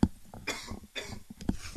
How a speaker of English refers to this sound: I got a cough again.